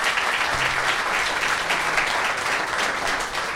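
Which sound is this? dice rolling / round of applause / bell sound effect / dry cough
round of applause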